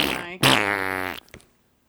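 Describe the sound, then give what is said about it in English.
A loud, buzzy fart stretches for about a second, starting with a short blurt, then a long vibrating tone that ends in a quick wet sputter. No voices. “You need like, I had Mexican tonight fart?”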